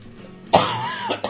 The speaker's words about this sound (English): I do apologize for all the coughing. I'm hoping that by next week it'll all be gone, and I can scream the whole night away.